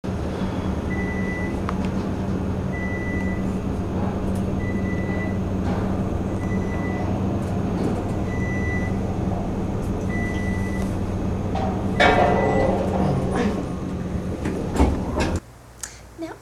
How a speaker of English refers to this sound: Yes, I do film the floor, but that's because the elevator was full of guys and I felt really stupid with my camera. But the point is to listen. Listen to the sounds that the elevator makes.